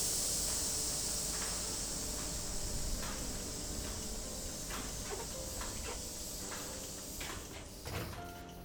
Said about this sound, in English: A yellow copy of her palm flashes beneath her fingers, and she steps back as, with a hiss, the Hex Clunker opens.